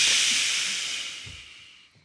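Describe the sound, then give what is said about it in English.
A breathy whoosh sound effect: a bright burst of airy hiss that starts loud and fades steadily over about two seconds. There is no talking. “That whoosh will send you to LA.”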